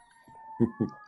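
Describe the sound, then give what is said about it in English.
A faint police siren holds a steady, slowly rising wail, while two short, louder bursts of sound pop up near the end. “Sirens on my end”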